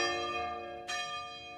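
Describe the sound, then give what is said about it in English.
Church bells ring for Mass with rich, sustained harmonic tones that hang in the air, and a fresh strike lands about midway through, renewing the resonant chime. No voices are heard. “We have Mass bells now.”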